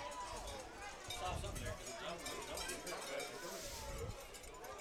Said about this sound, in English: I can hear those cowbells through my headset. Oh, yeah. More cowbell. We got cowbells on this end, and they have cowbells on that end.